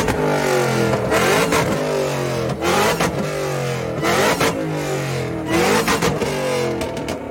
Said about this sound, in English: This was hilarious. I can still barely hear. But this is the winning entry at the rev contest. Let's roll it.